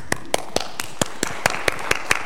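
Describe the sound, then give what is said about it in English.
Clapping from an audience at Morrisville church, thanking members of 50 years or more: about ten sharp, crisp claps in a steady, even rhythm, each one distinct rather than blurring into applause, with no talking over them. “We are clapping for you as well and for the incredible testament to God's love that you provide for us by your faithful service all of these”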